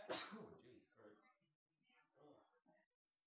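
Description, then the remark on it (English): A single loud, explosive sneeze bursts out at the start and quickly fades, followed by quieter breathy noises and soft, murmured voices. The person sneezing had just pulled off a headset in time. “Bless you.”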